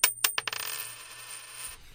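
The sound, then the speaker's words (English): A coin tossed for the traditional Sound Opinions coin toss lands on a hard surface, bouncing with several quick bright metallic clinks that tighten into a fast rattle and a long ringing spin before settling on tails, with no voices over it. “And to start it off, as usual, we have the traditional Sound Opinions coin toss.”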